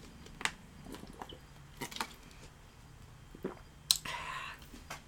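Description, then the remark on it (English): Quiet mouth sounds of someone drinking water: a few wet clicks, sips and swallows scattered over several seconds, with no talking. “It's just water. That's just water.”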